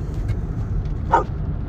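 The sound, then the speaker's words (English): A single short dog bark cuts through a steady low rumble of background noise, brief, with no other voices present. “Oh, I don't like dogs.”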